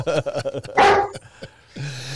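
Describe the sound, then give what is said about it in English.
Camaro, an office German Shepherd, barks repeatedly and loudly at a man walking into the office, a quick run of sharp woofs with one harsher, rougher bark in the middle, ending in a drawn-out whine-like note. “Camaro's yelling at one of the guys walking in the office.”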